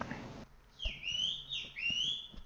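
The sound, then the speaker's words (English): A man whistles loudly at somebody across a parking lot, two long sliding whistles that swoop up and down in pitch, carrying clearly after a brief rustle at the start. “That is my neighbor whistling at somebody.”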